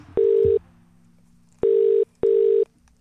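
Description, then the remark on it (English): Three loud, steady electronic phone tones, each about half a second long, with a longer pause after the first and a short gap between the last two, like a phone line ringing out as a call is put through. “have to put a call through to your wife”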